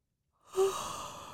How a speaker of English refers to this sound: That was a fake yawn. Did it sound like one? No.